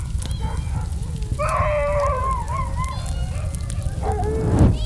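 Distressed animal cries, honking and squealing calls rising and falling, ring out from the burning Raise the Woof pet store in Leadership City over a steady low roar and crackle of the fire, with a sharp rising whine near the end.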